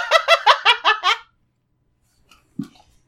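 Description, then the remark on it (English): A female dog named Latte barks about six times in a fast, even burst, each bark sharp and mid-pitched, then falls quiet apart from a faint low thud. “That's the most barks I've ever heard from her before.”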